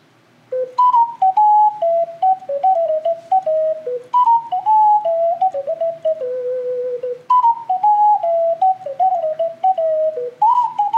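A bright, whistle-like Nintendo video game theme melody plays alone, its stepping, descending phrase repeating about three times at a steady, bouncy pace with no talking over it.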